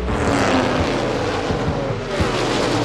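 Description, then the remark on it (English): A loud, continuous roar of many stock car engines at the green-flag start of the first stock car race of 2018 at Daytona International Speedway blends into a dense wall of sound, holding steady throughout with a slight dip and swell near the end, and no voices. “The first stock car race of 2018 is green. Here we go from Daytona.”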